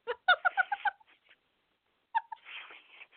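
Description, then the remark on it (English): A quick run of five or six shrill, chirping squawks from a parrot, a short pause, then one more squawk and a harsh, raspy screech, with no one talking. “Sounds like a goddamn parrot out there.”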